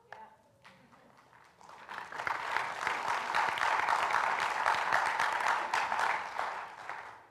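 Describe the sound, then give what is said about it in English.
A church crowd breaks into applause for the Hope United ministry, starting with scattered claps that quickly swell into steady, dense clapping for several seconds before tapering slightly at the end. “Y'all didn't clap.”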